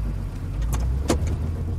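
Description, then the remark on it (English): A car drives steadily along the route from a Kmart back toward Osborne Road, its low engine rumble constant, with a couple of brief clicks or rattles from inside the cabin. “Okay, so I'm going to drive the route that Lois Stansbury told law enforcement in 1989 that she took after she paid for her purchases, loaded her daughters in the car at Kmart, and then made her way back toward Osborne Road.”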